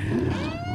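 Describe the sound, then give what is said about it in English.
Police car engines rev hard in a brief, loud burst, the pitch climbing steadily over a deep rumble, with no voices. “That he's able to speak so clearly while being run over by so many police cars is amazing.”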